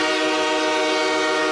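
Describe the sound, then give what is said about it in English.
A loud, sustained train horn blares steadily for the whole moment, its rich harmonic tone holding without a break and with no voices over it. “I have no idea how the train horn connects to jogging your memory.”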